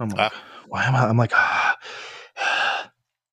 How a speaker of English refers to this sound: I keep realizing I'm breathing really heavy because I feel really congested right now.